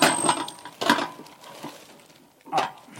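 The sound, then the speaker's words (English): Metal cookware, a frying pan and a roaster, clanks and scrapes as the pans are handled, with a couple of sharp clattering hits near the start and another metallic clunk toward the end, moderately loud. “what do we got here? Frying pan, okay.”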